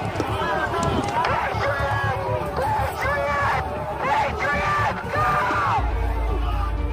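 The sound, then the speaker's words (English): A large crowd on the west lawn of the Capitol shouts and yells continuously as bike racks come down and it advances on police gates, many overlapping voices rising and falling in loud, agitated bursts over a constant low rumble of movement and noise. “waves the crowd onto the west lawn of the Capitol, while members in the crowd shout at him.”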